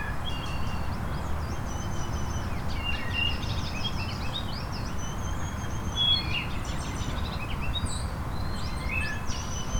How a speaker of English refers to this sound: This wood thrush is perched up in a branch in the shade.